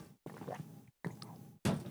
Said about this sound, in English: You're taking a big gulp. Taking a big gulp of water.